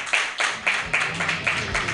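Steady, rhythmic clapping from an audience, about eight sharp claps in two seconds at an even tempo, moderately loud with no voices over it.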